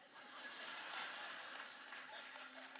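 An audience claps in a steady, dense wash of applause that holds for nearly three seconds, fairly even in loudness, with a faint murmur of crowd voices mixed in.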